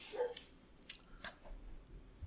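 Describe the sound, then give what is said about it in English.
A few faint dog barks sound in short, irregular bursts against a quiet, low background hum, with no talking. “His dog is barking, if you hear that.”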